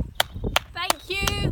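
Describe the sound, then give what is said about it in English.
Sharp, loud hand claps ring out four times at a slow, steady pace in the weekly UK clap for carers, filmed at a home in the Vale of Bever, while voices cheer and call out between them over a low background murmur. “she joined millions of UK residents in clapping for our carers last night.”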